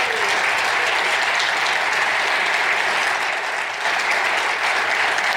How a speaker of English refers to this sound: Let's please give them a round of applause.